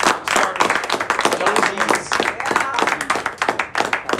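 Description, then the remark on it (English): An audience applauds steadily for about four seconds, a dense crackle of many hands clapping at fairly even loudness, with a few voices mixed in beneath it. “Hey, let's give a round of applause.”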